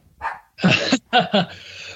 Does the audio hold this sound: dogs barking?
yes